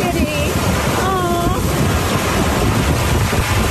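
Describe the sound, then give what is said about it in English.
Strong wind roars steadily and loudly throughout, buffeting the microphone, with a man's faint voice briefly yelling "kitty" to a cat outside in the first moments. “Listen to the wind.”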